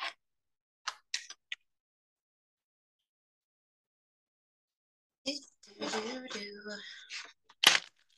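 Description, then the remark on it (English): A few sharp, papery clicks of tarot cards being handled, followed after a pause by a longer, busier burst of riffling and flicking as the tarot cards are shuffled, fairly loud, ending with a crisp snap. “Oh, apparently I can no longer shuffle.”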